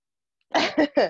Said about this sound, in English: I'm gonna sneeze.